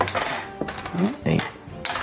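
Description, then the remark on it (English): Four four-sided dice (d4s) clatter and rattle across a dice tray, rolled for acid damage in a tabletop game, in a quick burst of sharp clicks and tumbling knocks, with murmuring voices underneath. “Somebody give him d4s. There's like, here's 4d4s right now. 3. There's a whole tray here.”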